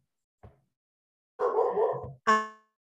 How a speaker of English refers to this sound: I'm sorry, my dog, and there's someone at the door.